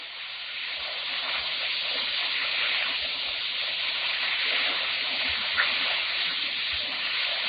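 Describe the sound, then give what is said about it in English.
Steady rushing water hisses and churns against glass without pause as the vessel is moving, a dense wash of spray with no voices and no distinct breaks, holding an even loudness throughout. “We're moving. There's water on the glass.”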